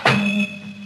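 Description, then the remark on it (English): A door slams shut once with a sharp, loud impact, followed by a low resonant hum and faint high ringing tones that linger and slowly fade. “The birds have been quiet, but the slam of the door maybe started them off.”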